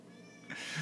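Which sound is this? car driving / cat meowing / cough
cat meowing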